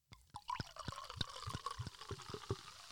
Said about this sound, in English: Okay, great. I'll pour myself some more champagne.